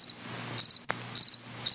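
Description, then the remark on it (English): Recorded crickets, downloaded from the internet, chirp in quick repeated bursts at a steady rhythm, heard through a constant layer of hiss and static, with one sharp crackle partway through, like an old recording. “But listen to these crickets, like something recorded out of 1955. The crickets have static.”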